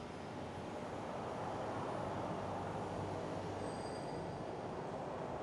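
A bus approaches, rumbling steadily, a dense low roar filling the scene, while thin high-pitched brake squeals whine faintly above it, growing more noticeable toward the end. No one speaks.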